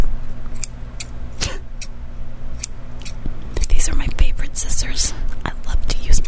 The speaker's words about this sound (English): I'm going to take my scissors now, and I'm going to cut your hair.